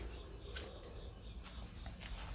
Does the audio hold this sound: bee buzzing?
yes